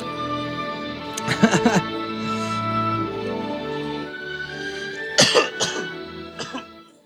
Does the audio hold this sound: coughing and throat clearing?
yes